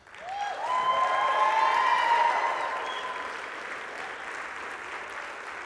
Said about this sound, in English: And can we give just a super loud round of applause for the graduates?